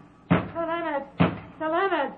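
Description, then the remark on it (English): Two solid knocks on a wooden door, spaced about a second apart, each one followed immediately by a voiced, drawn-out vocal sound. “Sir Leonard, open this door. Who knocks?”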